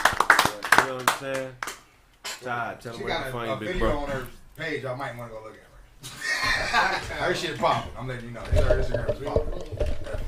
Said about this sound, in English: Let's clap it up for her being on the show.